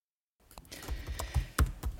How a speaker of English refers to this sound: Oh, who's typing away there? We're recording, whoever that is. Stop it. Whoever that is really types as well.